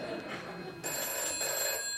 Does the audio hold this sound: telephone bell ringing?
yes